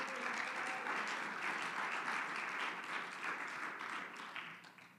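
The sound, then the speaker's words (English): An audience claps their hands to the Lord in a dense, steady wash of many hands for several seconds, loud and even before thinning and fading toward the end. “Oh, if you believe that, clap your hands unto him.”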